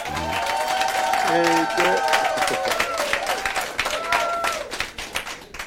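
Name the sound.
crowd clapping and cheering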